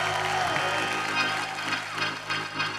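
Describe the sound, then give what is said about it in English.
A church audience breaks into steady applause mixed with shouts and cheers of praise to God, a dense, continuous wash of clapping and raised voices with a droning tone beneath. “Listen, maybe you ain't perfect, but if you made a covenant, open up your mouth and give God a praise.”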